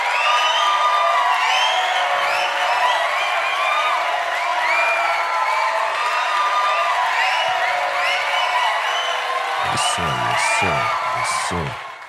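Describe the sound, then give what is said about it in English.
A large crowd cheers and whoops loudly and continuously, many overlapping voices filling the sound, with a few sharp clap-like bursts near the end before it cuts off. “So round of applause for that.”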